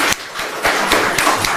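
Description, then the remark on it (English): An audience applauds after a program with children, many hands clapping together in a dense, steady crackle with a few sharper claps standing out. It stays fairly loud throughout, and nobody speaks. “Let's just give Diane and Miss Rachel a round of applause, and the children.”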